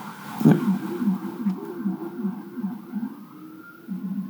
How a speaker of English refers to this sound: Can you hear it? I can, yes. It's the blip, blip, blip, blip, blip, blip. They're playing with the... I haven't heard one of those in a while. Don't play with your siren, dude.